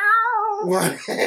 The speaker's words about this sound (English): there's two cats fighting outside of my house. Yeah, one of them looked grayish black. The other one's white, but you know, spotted. Was spotted white. Yeah, spotted white cats, and they were just having a stare down.